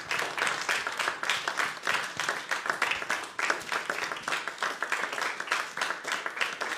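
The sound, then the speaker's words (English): A room full of people applauds their pastors steadily, a dense wash of overlapping hand claps that holds at a fairly even level for several seconds without any speech. “Let's give our pastors a great big hand clap.”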